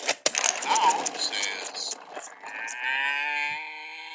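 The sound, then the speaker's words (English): A cow moos in a strained, distorted way, first rough and noisy with clattering clicks, then settling into a long, buzzy, sustained bellow. “That's a very sick cow.”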